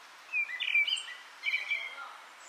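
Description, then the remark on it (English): Bright birdsong in short chirping phrases, two bursts of warbling notes, recorded in a garden in Dublin not far from the city centre, with quiet background and no traffic or voices. “Next up, we have Conor Gallagher, who lives in Dublin, sent us birdsong from his garden.”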